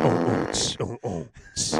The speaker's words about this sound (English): Are you ready for a juicy fart?